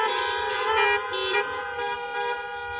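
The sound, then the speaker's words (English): Several car horns honk at once in a sustained, overlapping chorus of steady tones that swell and dip slightly over a few seconds, moderately loud with no talking, as people answer a preacher's call to honk their horns. “And so that substance or that evidence within us, how many know, and I want you to honk your horn if you know that if you were to die today, you'd go to be with the Lord.”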